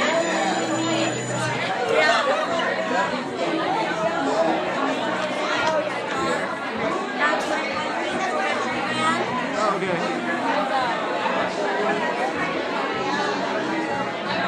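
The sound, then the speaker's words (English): Dense crowd chatter fills a packed venue, many overlapping voices blending into a steady, loud babble with no single speaker standing out. “Oh, it's getting packed. Holy moly. Was this crowd at all?”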